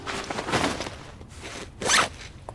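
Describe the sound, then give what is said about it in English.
A backpack zipper is pulled open in several raspy strokes, with a louder, sharper zip near the end. No one talks. “Let me get my backpack.”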